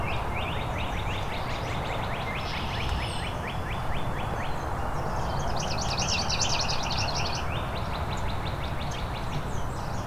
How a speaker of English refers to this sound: The palm warbler's not a very strong singer compared to the cardinals around here. Some of the red-winged blackbirds. I think we've got a second palm warbler now.